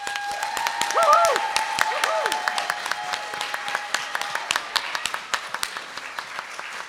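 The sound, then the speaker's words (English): The audience of New City Church, a United Methodist church, at its constituting church conference breaks into sustained applause to embrace its charter, many hands clapping in a dense patter that gradually thins to scattered claps, with a couple of brief tonal whoops or whistles near the start. “So rather than formal votes, let's just have a round of applause to embrace all of this.”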